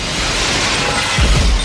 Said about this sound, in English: And then pushes himself back, fires, breaking the glass, and crashes through the window.